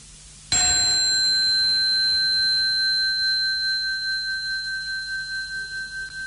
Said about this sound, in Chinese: 现在大家把眼睛闭起来，我给大家听一个钟声。这个钟声在佛陀是在我们今天没有引用出，在经文是有的。